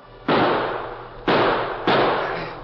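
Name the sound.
gunshots fired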